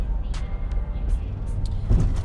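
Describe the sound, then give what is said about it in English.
Steady low rumble of a car moving along the road, a constant droning hum with a few brief higher hisses and a small thump near the end, heard from inside the vehicle. “Not only that, I'm actually driving right now. So if you hear the road, that's just because I'm always in the car driving.”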